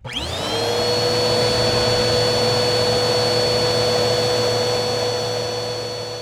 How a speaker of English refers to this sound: Vacuum cleaner. Vacuum cleaner? Ooh, like a shop vac?